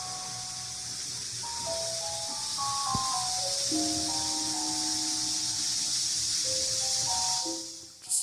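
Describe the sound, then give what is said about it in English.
A woman slowly lets the air out of a balloon: a steady airy hiss with thin squeaky tones that shift up and down in pitch, lasting about eight seconds before cutting off, with no talking. “She's slowly letting the air out of the balloon.”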